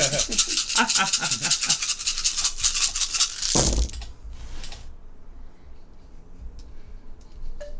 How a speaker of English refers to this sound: I'm rolling all of my dice.